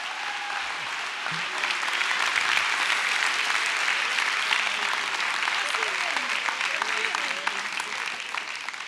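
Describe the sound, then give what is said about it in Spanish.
A church audience bursts into sustained applause for God, a dense steady roar of clapping that holds loud for several seconds with scattered voices faintly mixed in. “Denle un aplauso a Dios.”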